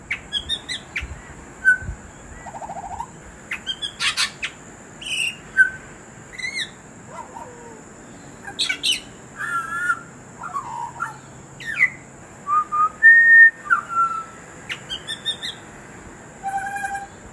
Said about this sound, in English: One thing we did notice, Daryl, as we moved around, we heard distinctly different melodies from different butcher birds and were able to repeat those notes to each other. They're very distinctive.